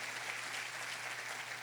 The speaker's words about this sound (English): Ese aplauso a Jesús. Amen. Give the Lord a strong round of applause.